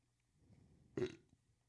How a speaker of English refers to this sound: Sorry I'm burping so much on this episode. Yeah, you're disgusting.